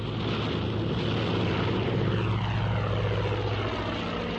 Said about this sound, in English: So, sounds as if they're taking off. They wouldn't leave us here, Algie. I shouldn't think so, but that's the Mozzie starting up.